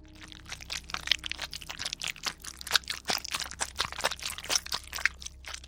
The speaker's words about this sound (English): The sound of someone chewing flesh. I looked around to see if anyone else in the group was feasting on the delicacy with gusto. That was not the case. I focused on the source of the sound and determined that it was certainly coming from behind me.